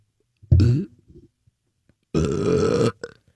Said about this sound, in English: Dude. Burp.